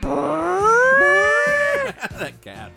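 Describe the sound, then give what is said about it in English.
A cat lets out one long, loud, drawn-out yowl that rises and wavers for nearly two seconds, followed by a person starting to talk. “That cat.”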